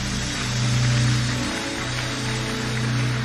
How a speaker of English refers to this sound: Koinonia, keep clapping. Let's encourage them as they come.